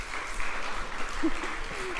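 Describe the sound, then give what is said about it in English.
A church audience claps steadily for the pastor, a dense wash of overlapping handclaps filling the whole moment at a consistent loudness, with faint murmurs of voices mixed underneath. “I'm laughing because we have a little meeting ahead of service, and they said, we practice clapping for you in huddle.”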